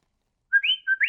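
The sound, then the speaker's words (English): A person whistles a quick series of chirpy, warbling tones that rise and dip, imitating the beeps of the Star Wars droid R2-D2. The whistling is clear, with no talking. “You start simple with R2-D2. That's easy. I mean, anyone can whistle.”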